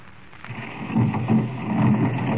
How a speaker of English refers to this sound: Now, when I press this buzzer, the stone door will swing open.